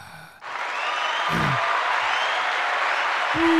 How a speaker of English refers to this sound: And we have a full crowd here. You can hear them. Full go.